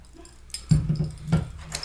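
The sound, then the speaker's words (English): Keys jangle on a keychain holding several keys, a Bell's Oberon keychain and a Bort name tag from Universal Studios, in a few short metallic bursts, with bright clinking rattles over a low steady hum and no talking. “On my keychain, I have several keys, but my two keychains are a Bell's Oberon keychain.”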